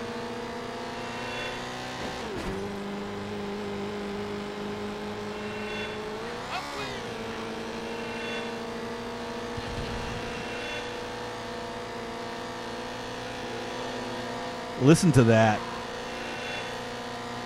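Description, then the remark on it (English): Race car engines drone steadily, rising in a few sharp accelerating surges as drivers hit their nitrous (NOS) boost, with one loud whooshing nitrous burst near the end; a voice speaks briefly over the engine noise. “You can hear them hitting their NOS.”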